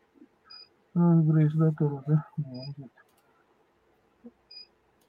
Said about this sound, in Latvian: Man baterijas nopiekstēja, kad ir notestējušos.